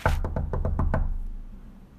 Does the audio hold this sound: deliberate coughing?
no